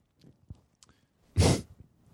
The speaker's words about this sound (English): What does that sound? That's your dog.